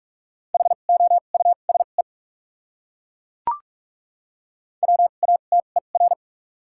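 Fast Morse code at 45 words per minute with doubled character spacing, sending common English words, in a single steady mid-pitched tone, clipped dots and dashes keyed in two bursts of characters, separated by a silent gap broken only by a brief click.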